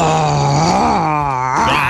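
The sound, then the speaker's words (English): A person gives a loud, drawn-out imitation of a lion's roar: a low, strained, groaning voice held for about two seconds, wavering slightly in pitch before rising at the end. “There, I'll do the lion impressions.”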